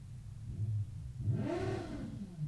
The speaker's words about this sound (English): Not about that, because definitely I don't give a fuck about these damn motorcycles thinking they're fucking top shit.